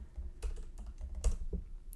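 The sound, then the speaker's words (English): Rapid, irregular computer keyboard typing, a series of crisp clicks and taps with a few louder keystrokes standing out over a low background hum, no one talking, as someone looks up the Lakers' win total from last season. “I'm going to look it up right now. Can you hear my keyboard?”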